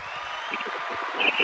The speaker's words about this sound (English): Like, I heard that giant applause, and I'm like, is that for me? I think so.